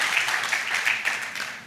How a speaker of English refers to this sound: Qué aplauso más raquítico. Terrible applause.